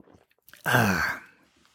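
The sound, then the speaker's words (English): A few faint mouth clicks and swallows from a bottle of Topo Chico sparkling mineral water, followed by a loud, breathy, satisfied exhale. No one speaks. “pause for a Topo Chico sip.”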